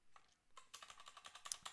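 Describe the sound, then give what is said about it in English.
Rapid typing on a computer keyboard as someone types out football team names: a quick run of crisp plastic key clicks tapping in an uneven rhythm, starting softly and then growing busier and louder, with no voices. “And I keep typing out the team names instead of the result.”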